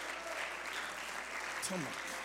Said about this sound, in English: Everybody clap your hands unto the Lord.